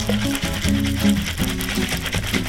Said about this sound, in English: When I made the White Lady, I did something called a reverse dry shake. Pouring off the drink and getting rid of the ice, one more shake to give better foam.